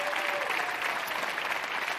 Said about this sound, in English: Give it up for these guys in the Volunteer Combine.